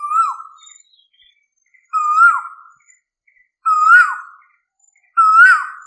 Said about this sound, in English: I am certain that most of you would have heard this call in your neighborhood, especially at dawn during the spring and summer seasons. The Asian koel is currently playing its famous album back here.